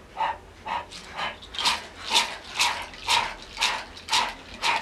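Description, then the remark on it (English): A person pants quickly and rhythmically through an open mouth with the tongue stuck out, imitating a dog, as the start of a breath-of-fire breathing exercise: about ten breathy huffs at a steady pace of roughly two per second, with no talking. “We're going to open the mouth, stick out the tongue, and begin to pant rhythmically like a dog.”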